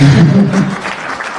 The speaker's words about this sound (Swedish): Man får applådera.